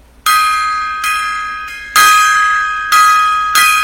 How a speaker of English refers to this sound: All right, gong time there.